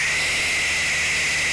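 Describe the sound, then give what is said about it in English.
A barn owl's harsh, hissing screech holds steady and loud for the whole moment, a raspy breathy shriek with no other sounds or voices around it. “There's the barn owl, which personally lodges pictures of undead young girls floating among the trees.”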